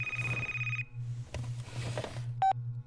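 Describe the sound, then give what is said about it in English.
A telephone rings with a bright, sustained electronic tone, followed by a short second burst, over a steady low hum and some rustling in between. “You better answer it in case it's an emergency.”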